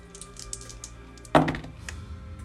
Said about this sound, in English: I need you for Sahan to roll me percentile dice